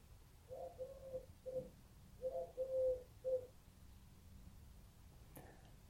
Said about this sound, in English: If you hear that pigeon, that really, that pigeon, it's on the windowsill. It's not outside. Well, it is outside, but it's practically inside.